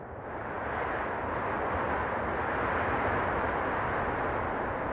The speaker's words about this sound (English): We're listening to a field recording of wind made by the sound artist Francisco Lopez.